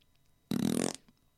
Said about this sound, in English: I can do the fart if you like.